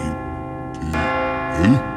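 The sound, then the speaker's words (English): Church bells of a local cathedral, rung by the bell ringer on his daily schedule, ring with a rich, sustained clang, fresh strikes landing about a second apart over a lingering hum of overlapping tones, fairly loud. “Every day, right on schedule, Timo rings the bells.”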